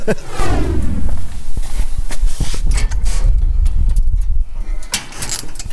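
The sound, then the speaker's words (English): A door swings open into a workshop and footsteps move steadily across a hard floor, over a loud background of mechanical rumble and hum, with indistinct voices in the mix. “So we've come through a door now into, an identical workshop to the one that we were in before, but there's no one working in here.”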